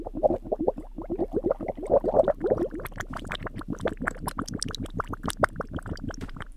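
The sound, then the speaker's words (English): Squelchy ASMR bubbling with a steady rapid rhythm of wet pops and gloops, continuing for several seconds on its own with no talking. “to enjoy the bubbling.”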